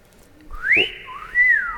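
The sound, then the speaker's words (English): A person whistles a short melodic tune, two bright sliding notes rising and falling, clear with no talking. “It's going to be lots of that, except it won't be me because I don't know how to whistle.”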